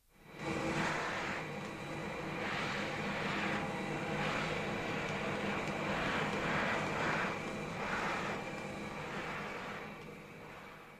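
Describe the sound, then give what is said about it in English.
A vacuum cleaner switches on and runs with a steady, loud whooshing roar and a faint whine, pulsing slightly as it continues for several seconds before easing off at the end. “Go on, don't be afraid, it's only a vacuum cleaner.”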